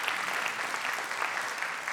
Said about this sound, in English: And so you're clapping right now, but you need to clap when they sit down next to you too.